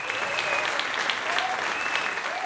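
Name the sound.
audience applause welcoming guests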